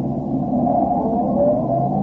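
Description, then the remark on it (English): A car engine idles with a steady, low rumble while a man sits alone behind the wheel, holding an even level throughout with no speech and no clear rise in pitch. “The car motor is idling.”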